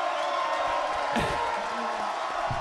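crowd cheering wildly

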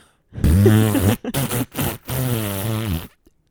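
fart

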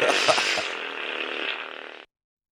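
fart sound

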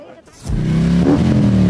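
motorcycle engines revving

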